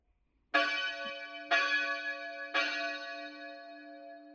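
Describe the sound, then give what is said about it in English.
A hand bell is rung by a monk three times at a steady pace, about a second apart, to alert the other monks of a guest; each bright metallic strike rings on and overlaps the next before slowly fading. Loud, with no voices. “I have to ring the bell to alert my fellow brothers that we have a guest.”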